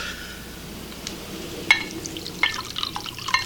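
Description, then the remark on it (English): Liquid trickles and splashes into a glass, broken by three sharp glassy clinks spaced about a second apart, fairly quiet, with no voices. “Pour me one then.”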